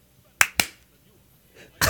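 Sharp hand claps for audio sync, made on a 3, 2, 1 count, ring out in quick succession, two snapping almost together, then after a short quiet pause a third clap lands near the end.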